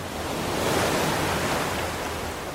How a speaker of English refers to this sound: Waves, tremendous waves, scary waves. And if you get in them, they'll just throw you out of the water. They could break your neck or anything.